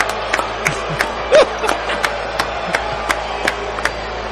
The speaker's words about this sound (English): I'm not clapping for Julius Randle being booed